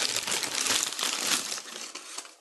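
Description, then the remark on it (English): Paper bag crinkling and rustling, a dense, continuous crackle that fades toward the end, with a faint slide of a pie container moving inside. No voices. “Just by the sound of that, it sounds like a pie-type item. Go ahead and open. I knew. I heard it sliding in that.”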